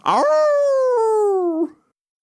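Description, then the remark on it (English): A person's voice imitates a wolf with a loud, drawn-out vocal sound lasting about a second and a half. It starts with a rough onset, then holds a steady, slowly falling tone. “Their teeth and claws, their growl, their...”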